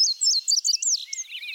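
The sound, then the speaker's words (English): A songbird sings a rapid, bright warbling phrase of high chirps and slurred notes, clear, with no voices or other sounds around it. “The robin's insistent caroling awakens the oriole. Then the indigo bunting.”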